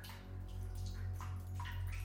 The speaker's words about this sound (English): There is a water pump outside, dripping constantly.